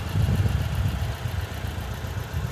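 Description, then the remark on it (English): A stock 2018 Porsche Cayman GTS sports car with PDK transmission runs steadily at a low, throaty idle, with a deep rumbling pulse and slight vibration throughout. “It's a 2018 Cayman GTS PDK. I believe it's stock all the way around.”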